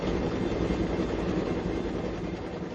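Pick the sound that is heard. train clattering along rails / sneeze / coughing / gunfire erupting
train clattering along rails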